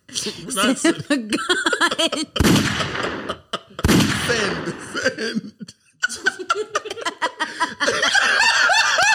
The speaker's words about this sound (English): I'm sending them gunshots.